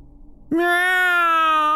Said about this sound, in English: Meow! A high-pitched wail broke my thoughts. I turned to see the two cats still standing on the porch.